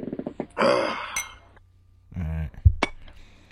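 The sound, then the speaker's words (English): A couple of brief, dull clinks of plastic cups knocking together in a toast, with voices and vocal sounds around them. “It was plastic clip clink.”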